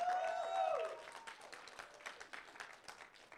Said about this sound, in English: With that, welcome to Highlight Church. Let's give our first-time guest a hand clap.